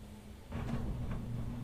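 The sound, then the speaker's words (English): A garage door motor starts up with a low mechanical hum and rattling rumble that holds steady, muffled and fairly quiet. “It's okay. It's just a garage door.”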